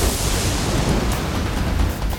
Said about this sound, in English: Oya tried next. She raised her hands towards the sky. A storm burst from her fingertips.